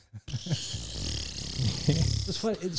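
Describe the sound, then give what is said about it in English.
A voice imitates a slow armpit fart: a drawn-out, low, buzzy sputter with wavering pitch lasting a couple of seconds, ending in a few short, rising vocal bursts. “He could do that weird armpit fart. Yeah. The really like the slow one.”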